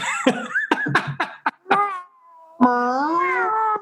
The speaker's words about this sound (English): Because whenever we're on like a different level of the house, it's like we're on a different level, and he's like alone on like one of the stories of the house, and this is how he meows. And it's very accurate.